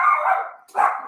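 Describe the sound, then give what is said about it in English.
A dog barks twice, the first bark a drawn-out, wavering woof that trails off, followed after a brief gap by a second sharp bark. No one speaks. “My dog, of course, right?”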